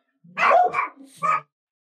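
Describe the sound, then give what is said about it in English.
A dog barks in a quick burst: two sharp, harmonic barks followed after a short pause by a third, loud and clear with no talking over them. “Yeah, your dogs are aggressive. It's just on one right now.”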